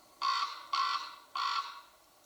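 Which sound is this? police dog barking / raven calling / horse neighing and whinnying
raven calling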